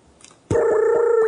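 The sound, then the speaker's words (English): After a brief near-silent moment, a loud, steady electronic dialing tone of an outgoing phone call switches on abruptly and holds unbroken to the end, with faint periodic pulses beneath it and no talking. “Call him. You can call him.”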